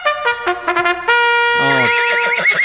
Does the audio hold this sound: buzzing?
no